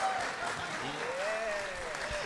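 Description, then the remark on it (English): Steady applause from an audience, a dense patter of clapping hands filling the whole clip at a moderate, even level, with a faint tonal whistle gliding through it. “Can I have a hand of applause if you know what prestidigitation is?”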